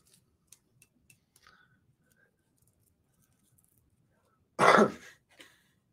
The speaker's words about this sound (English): Oh, excuse my bad cough again.